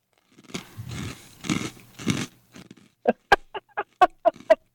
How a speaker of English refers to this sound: You hear me crunching? I do. Where can you ever hear a sock eating cereal on the radio except for Nowhere.